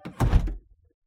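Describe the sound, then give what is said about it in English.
A door shuts with a single solid thud as someone leaves, its low rumble fading quickly into near silence. “Turn my lights off and lock the door on your way out.”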